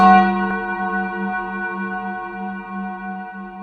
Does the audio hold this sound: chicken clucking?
no